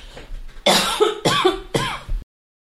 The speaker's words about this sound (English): excuse me for a moment while I cough.